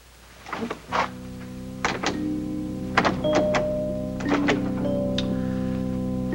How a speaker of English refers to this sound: You've locked the door. Oh, yes, yes, I've locked the door.